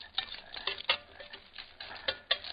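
Cans being opened at a campfire: a close series of sharp metallic clicks and scrapes in an uneven rhythm, like an opener working around a lid, with no voices.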